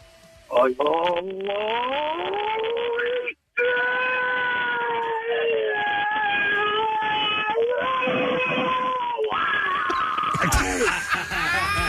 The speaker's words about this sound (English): Best scream wins. Let's have you do it.